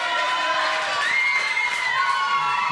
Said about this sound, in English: First one to win gets a huge applause. One, two, three. Cheer them on.